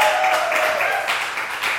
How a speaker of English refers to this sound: To everybody here, let's just give a great big round of applause for Jesus. How about that? Amen.